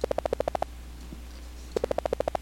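A rapid train of short, buzzy tonal pulses, about a dozen per second, each stepping slightly higher in pitch, made by speeding up a sequence of pulses separated by spaces. It comes in two bursts separated by a quiet gap of about a second.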